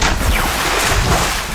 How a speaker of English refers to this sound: After a huge splash, both Eston and Rachel's faces turned pale.